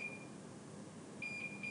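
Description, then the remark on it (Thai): An IV saline drip machine alarm beeps because the saline has run out, in short, high-pitched electronic tones repeating at a steady pace over a low background hiss, with no one speaking. “ยังไม่ทันจะบอกอะไรเลยเสียงปี๊ดปี๊ดก็รู้เลย”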